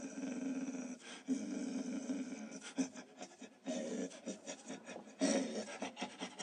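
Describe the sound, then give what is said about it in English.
A person imitates a dog's growl, a raspy, throaty rumble voiced in several strained bursts over about six seconds, with short pauses between them and a louder final push. “I can't even make growling noises.”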